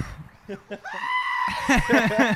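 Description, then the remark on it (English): A person mimics a goat's bleat: a loud, drawn-out nasal cry with a shaky, wavering pitch that breaks into quick quavering pulses, preceded by a few short vocal sounds. “There's the goat again. What? There's the goat. I'm pretty sure that's just ….”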